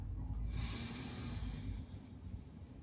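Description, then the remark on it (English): A single airy breath during a slow stretching exercise, a long exhale lasting about a second, over a low steady rumble, with no talking. “We're breathing, we're moving.”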